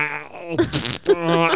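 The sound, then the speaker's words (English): A voice imitates a fart with a single drawn-out, buzzy raspberry lasting over a second, its low droning tone breaking into a loud, hissy sputter midway before droning on. No words are spoken. “So I say someone says, hi, how are you? And instead of talking, you go.”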